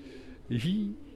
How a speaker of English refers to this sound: Well, we're under a railway bridge on the canal at the end of Tomlin's Terrace. And you might be able to hear pigeons cooing in the... Might be able to hear. It's very loud.